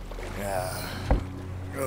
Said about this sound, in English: The waters unyielding to the little boat containing the three magicked folk, Bri, Myrtle, and Octavin, as it carries them east of Windland, toward stranger shores.